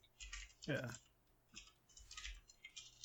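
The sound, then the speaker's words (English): Quiet, rapid clicking of someone typing on a computer keyboard, coming in short bursts, with a brief murmur of a voice partway through. “I'm typing.”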